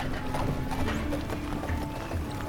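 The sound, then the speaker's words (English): Horse hooves clip-clop in a steady, uneven patter in a town's main plaza against a dense, continuous background din with a low hum. A possible whinny blends into the busy scene, with no voices. “So the next morning, Jorge packed his things and Gregoria took him to the town's main plaza to find a horse to ride north.”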